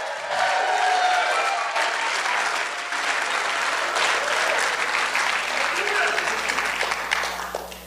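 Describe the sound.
A crowd claps steadily and loudly for several seconds, clapping and shouting to the Lord, the dense applause mixed with scattered shouts and cheering voices throughout.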